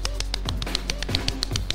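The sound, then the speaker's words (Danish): Small hands clap quickly and steadily, about a dozen light, slightly muffled slaps in under two seconds, with no voices. “Jeg klappede i mine små hænder, selvom lyden den godt kan forveksles.”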